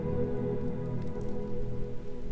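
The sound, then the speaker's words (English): Steady rain falls at night without pause, a dense, even patter that stays at the same moderate level throughout, with a low continuous hum underneath and no voices. “Ludlow and Gustav both ran to the window and tried to look down into the rainy darkness.”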